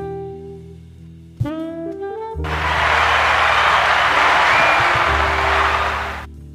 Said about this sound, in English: Ooh, round of applause for that.